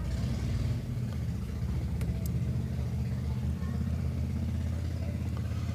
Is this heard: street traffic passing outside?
yes